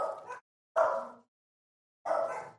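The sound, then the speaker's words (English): Dogs bark in three sharp, separate bursts with short silent gaps between them, loud, with no talking, freaking out because a bug guy (pest control worker) is at the house. “The dogs are freaking out because of the bug guy being here.”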